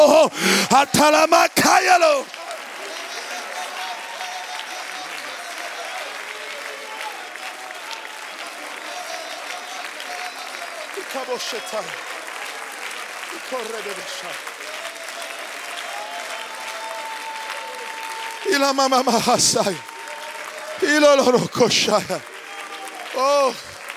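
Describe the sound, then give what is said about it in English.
A large audience, on their feet from the front to the back and up to the balcony, claps continuously in a dense, steady wash of applause, with loud voices calling out over it at the start and again near the end. “If you're hungry, everybody from the front to the back, from the bottom to the balcony, I want you to clap your hands, and I want you to lift up your voice.”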